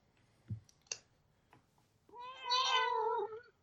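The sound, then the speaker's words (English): A cat named Ozzy lets out a single long, drawn-out meow, loud, preceded by a few scattered soft clicks and taps. “So the cat made an appearance.”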